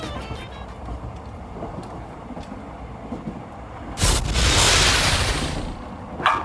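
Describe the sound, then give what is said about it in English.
A fast Japanese train whooshes past, overtaking the moving train, in a sudden loud, roaring rush that swells and fades over a couple of seconds, set against a steady low rumble of a moving carriage. “That was the Japanese train lapping us.”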